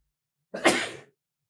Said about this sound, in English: Bless you. Excuse me.